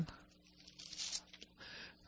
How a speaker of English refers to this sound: My hand is kind of slow today, turning pages, but we'll get there.